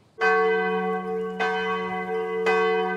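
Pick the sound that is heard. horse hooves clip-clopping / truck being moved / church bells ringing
church bells ringing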